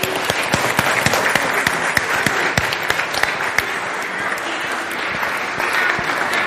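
An audience claps steadily for several seconds, a dense, even patter of many hands with sharp individual claps standing out, staying fairly loud throughout with no speech.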